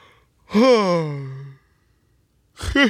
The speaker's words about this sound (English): As I yawn.